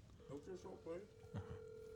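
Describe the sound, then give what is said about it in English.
A steady electronic phone tone hums continuously as a call is placed, with a person talking faintly over it. “Okay, let me just do this phone call.”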